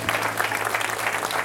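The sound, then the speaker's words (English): A crowd claps steadily, a dense, even wash of many hands applauding at full strength for the short stretch, with no voices rising above it. “We can clap that up.”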